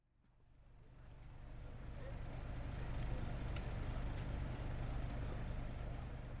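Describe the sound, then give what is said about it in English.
A company car drives off away from Hvolsvöllur, its low engine and road rumble swelling over the first few seconds and then holding steady and loud, with a faint whooshing texture above. “And with that, I drove away from Hvolsvöllur.”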